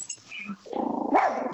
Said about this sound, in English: Missy's playing with a toy and the neighborhood dogs are barking.